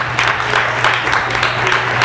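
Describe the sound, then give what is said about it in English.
A crowd applauds steadily for the team at the Wildcat and the West Genesee Marching Band, a dense wash of many hands clapping at once, fairly loud and continuous, with no voices standing out above it. “And can you please, one more time, give them a round of applause to show them some love that they deserve.”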